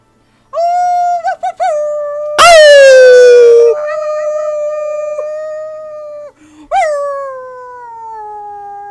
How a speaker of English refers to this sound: Someone needs to put this dog down. She's going.